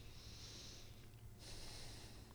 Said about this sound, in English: I mute myself while … talks so I can blow my nose.